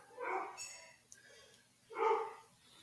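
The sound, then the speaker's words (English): Dogs bark in two loud, separate bursts about two seconds apart, with a fainter yelp in between and no talking. “Somebody's dogs are barking.”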